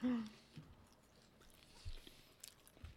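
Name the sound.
chewing potato chips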